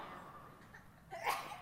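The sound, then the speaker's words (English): A single quick sneeze bursts out after a stretch of quiet background hiss, sharp and breathy, fading within a fraction of a second. No one speaks. “Bless you.”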